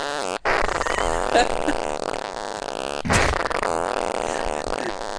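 A buzzy, distorted fart sound effect from a phone app plays continuously, loud, with a sharp burst midway, like a novelty noise played back through a small speaker.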